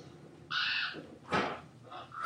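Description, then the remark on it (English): Ravens caw harshly, a drawn-out croak followed by a rough, noisy squawk and then another call starting, all in quick succession with no talking. “So all of those the ravens, their eyes just went white.”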